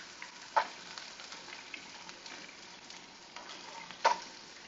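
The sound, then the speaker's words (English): Chicken sizzles steadily in a frying pan, a continuous crackling hiss broken by two brief louder pops and spatters, with no one speaking. “So our chicken's gonna keep cooking.”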